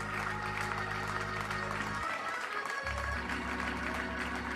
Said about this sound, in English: Go ahead and clap your hands unto the Lord. If you're just thankful, are you really thankful?